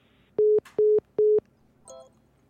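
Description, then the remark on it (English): A telephone busy signal after a cut phone call: three loud, evenly spaced beeps of a steady low tone, followed by a faint electronic blip, with no one talking. “All right, phone grid cut. I'm going to call you guys back again.”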